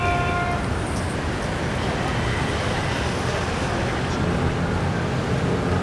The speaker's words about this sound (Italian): Allora, questo è un podcast e voi state ascoltando i classici rumori di traffico e io sto facendo finta di essere in mezzo al traffico.